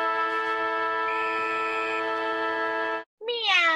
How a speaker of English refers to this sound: Meow.